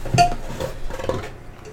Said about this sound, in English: Their Dayblazer easygoing ale from New Belgium. Let's crack these.